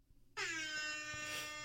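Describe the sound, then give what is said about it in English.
A loud, blaring air horn sound effect played from the Instant Rap Air Horn app on a phone kicks in abruptly after a short quiet moment and holds steadily, bright and harmonic-rich. “It's the Instant Rap Air Horn app.”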